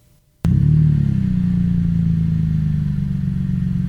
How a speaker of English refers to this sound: All right, and here is the Borla S-Type exhaust. All right, hit me.